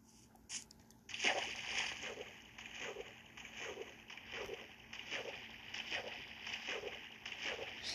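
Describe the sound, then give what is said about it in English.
Steady, rhythmic splashing and sloshing of water as someone crosses through it, wading or paddling, continuing for several seconds with no voices. “Now it's time to just cross the water.”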